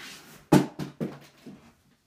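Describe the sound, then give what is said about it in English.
A small hard Mr. Perfect figure falls off a shelf, hitting a surface with one sharp knock and then bouncing three or four more times in quickening, fading taps. “Perfect TBD just fell off my shelf.”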